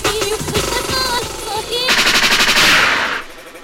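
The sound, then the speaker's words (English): Over a pumping music track, a loud DJ gunshot sound effect breaks in, a rapid burst of rattling shots lasting about a second before cutting off. “Liquid means rewind, a gunshot means forward.”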